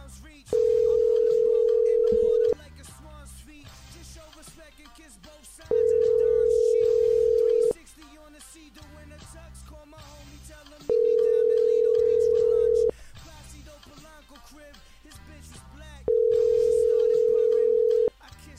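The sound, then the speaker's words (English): A telephone ringback tone purrs four times in a steady pattern, each long two-second ring followed by a pause, with faint voices and background noise underneath, as a call is placed to a cell phone. “Let's call his cell phone, first of all.”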